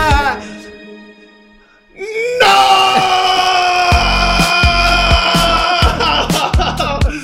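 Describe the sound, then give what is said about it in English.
A person's voice builds from a strained wail into a loud, sustained scream at a calendar that lasts several seconds, raw, with rhythmic low thumping underneath toward the end. “I scream at my calendar.”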